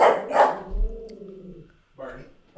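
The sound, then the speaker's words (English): Barney, a small, fuzzy, very fluffy Lhasa-poo dog, gives several sharp, yappy barks in Vancouver, two quick ones at the start and more after a pause, with a drawn-out tonal sound in between. “Barney is a very authoritative, whatever the fuck he is. He's a Lassapoo.”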